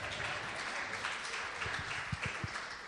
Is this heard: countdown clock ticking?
no